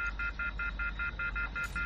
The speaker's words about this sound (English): Okay, I'm frantically pushing the buttons down, to try to get a signal. You're just hearing that harsh disconnection tone.